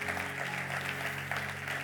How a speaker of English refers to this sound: Y'all are clapping.